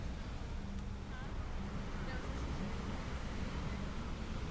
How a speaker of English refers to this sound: You'll hear in the background the wind as it blows through the trees, and the waves as they crash upon the beach.